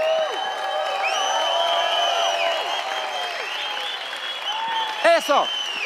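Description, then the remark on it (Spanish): A church audience cheers and applauds steadily, with sharp whistles and shouted whoops rising over the sustained clapping, ending in a few loud whistles near the end. “Silbe, grite, cante, aplaude, digo algo.”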